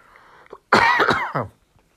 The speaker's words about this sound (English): Excuse me while I cough.